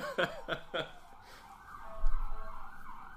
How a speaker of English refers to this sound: Let's wait for this siren to go by.